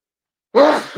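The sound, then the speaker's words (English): A single sudden sneeze bursts out after half a second of silence, loud, with a breathy rush that trails off and a small catch of breath at the end. “Bless you.”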